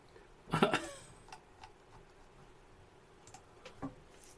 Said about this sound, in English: I was clearing my throat.